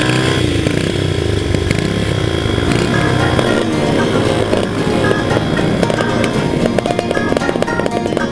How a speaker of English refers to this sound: the throb of motorcycle engines fill the air.